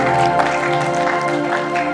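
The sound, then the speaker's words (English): A church audience applauds young people accepting Jesus, in a steady, dense wash of clapping that holds at an even loudness for the whole moment, with sustained musical tones ringing underneath. “And the greatest thing was, I don't actually know the number, but I saw a few hands go up and young people accepted Jesus into their heart, which is worthy of a round of applause.”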